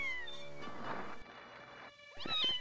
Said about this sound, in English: And it's the little meows as well. I'm a big fan of cats, so, you know, this episode, when you see a little kitten Cringer, it's like, oh, here he is.